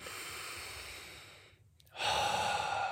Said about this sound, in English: Just breathing. So realize when you take in a breath,